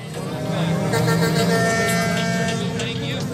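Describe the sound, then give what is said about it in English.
Truck air horns blare at a protest in the streets of Ottawa among flag-waving, sign-carrying protesters, in a loud, sustained, overlapping chorus of steady tones, with the murmur of a crowd and street noise underneath throughout. “The streets of Ottawa are filled with horn honking, flag waving, sign carrying protesters.”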